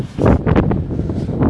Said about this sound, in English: Fuck, it's really windy.